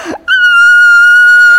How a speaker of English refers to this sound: Ah! That's me the whole time. I have a witness. That was me the whole time, screaming the whole way down.